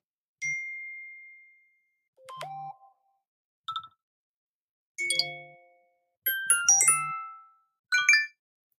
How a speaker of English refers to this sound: Those are phone things. There could be other things, but for me, those are things that remind me of things.